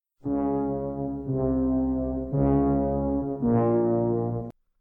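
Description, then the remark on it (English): Four long, low, brassy notes sound one after another, each held about a second, forming a heavy, ominous death motif from the first seconds of the horror film The Shining, with no voices. “Those notes have become shorthand for death, both in classical and modern composing, especially in movie soundtracks.”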